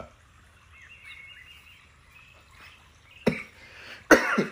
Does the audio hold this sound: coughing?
yes